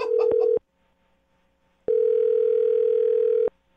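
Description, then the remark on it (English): A phone line rings through a handset: a short burst of tone with quick dialing beeps, a pause, then a longer steady ring tone. Loud and clear, with no voices. “I just dialed the phone number.”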